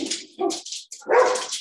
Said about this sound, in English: Oh, we might hear the dogs. Oh, yeah, for sure. Oh, so our neighbors across the street are moving. That's why I'm recording downstairs. Oh, because the dogs are barking.